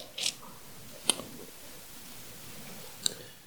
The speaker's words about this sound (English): I love to hear pages turn, or finger swiping, whatever it is that you do.